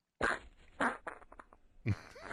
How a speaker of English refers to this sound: You can't just be farting in people's general direction. That was breathy.